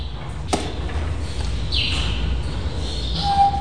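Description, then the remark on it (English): A female ape, Bonnie, whistles for a microphone: a brief, thin, steady whistle near the end, preceded by a sharp click and a breathy hiss. There is no talking. “Very, very good whistle. Good, good whistle.”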